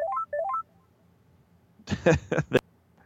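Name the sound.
telephone keypad dialing tones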